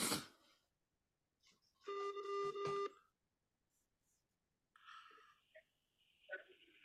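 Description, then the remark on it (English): A telephone ringing tone sounds once as a steady electronic burst lasting about a second, heard as if over a phone line, during a prank call to Uri Geller, with a few brief muffled noises around it and no talking. “It's ringing.”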